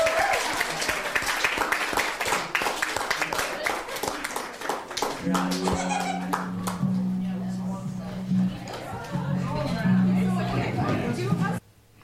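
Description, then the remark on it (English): An audience at a poetry slam event bursts into loud, dense applause that carries on for several seconds, then thins out as a low sustained tone rises underneath, before cutting off abruptly. “Thank you, everybody, for coming. One more round of applause.”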